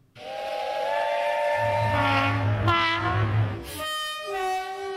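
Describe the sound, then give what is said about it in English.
A train sound effect introducing a show's 'lame train' segment: a loud, sustained steam-style whistle blows with shifting harmonic tones over a rumbling hiss and low engine drone, then ends with a brief burst of steam. “All right, here comes the lame train.”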